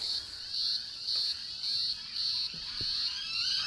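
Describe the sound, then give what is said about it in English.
Many cicadas buzz outdoors in a steady, high-pitched drone that swells and eases in regular pulses, loud and continuous throughout, with a couple of faint clicks in the background. “Oh, wow, there's lots of cicadas out at the moment. Can you hear that buzzing?”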